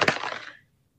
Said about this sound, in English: I love this dice because it always rolls high.